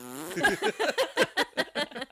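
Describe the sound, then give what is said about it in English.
A voice makes a mouth imitation of a fart: a short buzzing tone breaking into about ten quick, rhythmic sputtering bursts, fairly loud, with no other talk. “It's a ring box. Fart box.”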